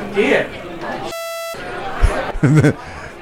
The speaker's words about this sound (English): Yeah, I just had to turn that off. The crowd is getting way too noisy in here. It's getting too crowded in here.